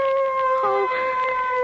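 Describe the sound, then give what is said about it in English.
Dogs howl in a long, sustained, mournful tone that wavers briefly partway through, steady and fairly loud throughout the short stretch. “Those dogs.”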